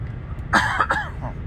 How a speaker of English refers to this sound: Wait, hang on while I cough for a second.